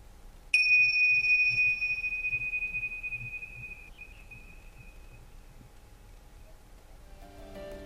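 A meditation bell is struck once, giving a clear, high, pure ring that slowly fades over several seconds into quiet, with faint low rumble underneath and no talking.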